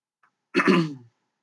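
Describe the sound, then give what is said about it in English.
A single rough throat clearing, a short raspy burst lasting about half a second, alone with no talking around it. “I guess if your drinking game is how many times your drinking game for the night is take a drink every time I clear my throat.”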